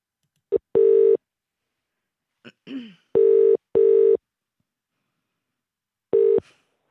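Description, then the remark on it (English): A telephone ringing tone heard through the line as someone calls a person back: steady electronic bursts, one paired double-ring after a short blip and a faint clatter, then another burst. No one speaks. “Let's call her back.”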